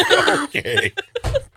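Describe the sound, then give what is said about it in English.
A short burst of coughing runs straight into breathy laughter, a few choppy voiced bursts followed by a low throaty cough near the end, fairly loud and without words. “I cough and then I laugh and it tickles.”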